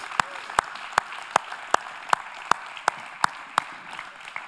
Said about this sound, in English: Come on, let's all clap that in.